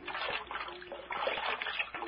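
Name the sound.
cold water splashing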